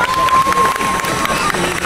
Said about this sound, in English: As the drivers take the applause of the crowds and their warm-down lap, for those who've got enough power to do a warm-down lap,